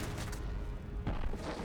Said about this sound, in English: That was a quiet explosion.